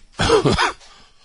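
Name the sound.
cough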